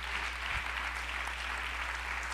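An audience gives the Lord a hand clap, clapping together in a dense, steady wash of overlapping handclaps that holds at a constant loudness for the whole stretch. No voices are heard.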